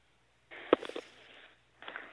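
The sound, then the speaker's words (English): Muffled, heavy breathing over a tinny telephone line: a long rough exhale with a sharp click near its start, a short pause, then another breath. Nobody speaks. “I know you're there. I can hear you breathing.”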